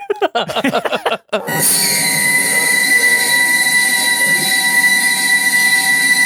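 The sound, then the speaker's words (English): A deafeningly loud, piercing theatrical whistle, the kind that usually plays each time someone gets their throat slit, blasts in after a second or so of rumbling rail noise, holding one steady shrill tone with layered overtones until the end, no voices. “I do wish that they had the deafeningly loud whistle.”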